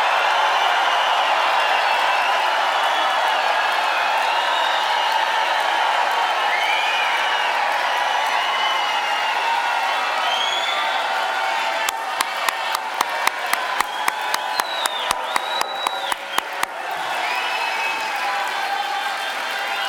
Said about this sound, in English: Can you give the King of Kings a mighty shout of praise and clap your hands like that?